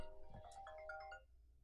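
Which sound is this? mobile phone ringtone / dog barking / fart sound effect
mobile phone ringtone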